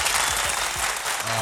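A group of people claps steadily, a dense, continuous patter of many hands that stays loud and even from start to finish.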